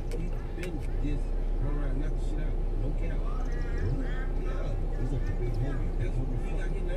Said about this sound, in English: Somebody pulling up over here now.